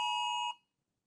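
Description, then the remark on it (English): A loud, harsh electronic emergency alert tone from a phone, part of a national FEMA alert test, blares steadily for about half a second, then cuts off abruptly into silence. No voices are heard. “That's the national FEMA test that we were warned about.”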